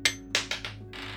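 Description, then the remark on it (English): Dice are rolled for a strength check in a tabletop role-playing game: a few sharp clacks as they bounce, then a steady rattling clatter as they tumble to a stop, with no voices. “All right, roll strength.”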